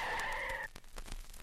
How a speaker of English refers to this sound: Swerve, you idiot, swerve. I'm swerving, but we're going to hit that tree.